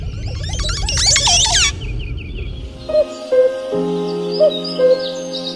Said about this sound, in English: Just recently, I like transcribed the song of a Oropendola. It is absolutely crazy. You would never believe it's a bird song if you listen to it.